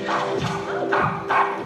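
A dog barks in a few sharp, fairly loud bursts spaced roughly half a second apart, over a steady background hum.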